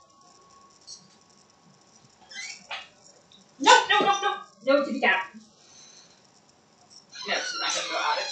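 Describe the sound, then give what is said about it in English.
A dog named Maggie whines and lets out a couple of loud, harsh barks in quick succession, then more yelping toward the end, while a person speaks over it. “Maggie, you want to go to the back door?”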